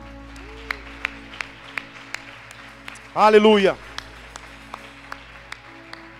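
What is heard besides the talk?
audience applause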